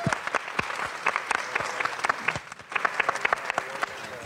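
An audience at a business panel event claps steadily, a dense patter of many hands at moderate loudness, applauding the event organizer, with no talking over it.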